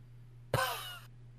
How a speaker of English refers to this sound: Cough.